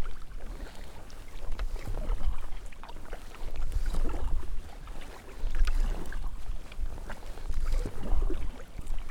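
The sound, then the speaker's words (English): Kayak paddle strokes dip and swish through sunlit water into a head breeze in a slow, relaxed rhythm, each stroke a soft splash every second or two, over a steady low rumble of wind. “The pace of my paddling is very relaxed at the moment.”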